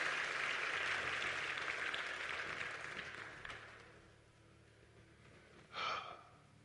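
A church audience's steady, dense applause for the choir fills the first few seconds, then thins and fades out, followed by quiet and a brief sharp breathy burst.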